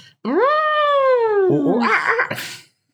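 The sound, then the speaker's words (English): A voice imitates zoo animal noises: a long, rising then slowly falling howl-like cry, breaking into a rough, growly squawk before stopping abruptly. “Zoo noises.”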